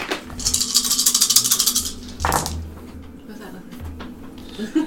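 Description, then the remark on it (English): A handful of dice rattle rapidly in a cup for over a second, then tumble out with a sharp clatter, followed by quieter shuffling and low background murmur. “A lot of dice.”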